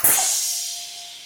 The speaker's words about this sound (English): I just take my friend alcohol here and just do a little clean, clean, clean. Okay. And then I pull this down and then ready. I'm going to go 3, 2, 1. And we're all going to go together. Okay. And it's just going to be a spray of water.